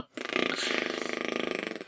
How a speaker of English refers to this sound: I'm like a bleeding fart factory. I've eaten beans for 3 days on the trot now.